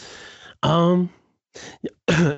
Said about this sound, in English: excuse me, I just coughed all up in your ear.